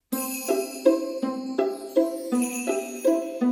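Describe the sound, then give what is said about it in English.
Bright jingle bells ring out a short tune that keeps repeating, each note clear and evenly paced over a steady high shimmer of jingling, with no voices. “Can you hear those jingle bells ringing away there?”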